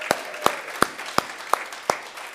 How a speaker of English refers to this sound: So let's give a good old baseball cheer to our other campuses, New Brunswick, Nutley, and Mountainside.